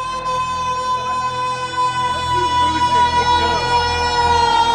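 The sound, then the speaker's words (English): A hand-cranked siren holds a loud, steady, piercing wail at full pitch for several seconds, its tone barely wavering, with faint voices murmuring underneath. “First thing you want to talk about at lunch, no doubt, hands down, is how good were we on the siren last night?”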